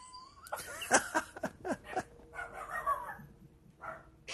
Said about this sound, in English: I think the dog agrees. Yeah, I don't know what's going on over there.